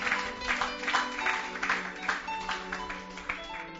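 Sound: audience clapping hands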